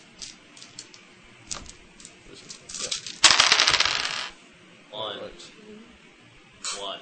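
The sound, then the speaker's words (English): Damage dice clatter and rattle across a table in a quick burst of hard clicks, fairly loud, settling after about a second, with brief murmured voices and small taps around it. “And damage dice.”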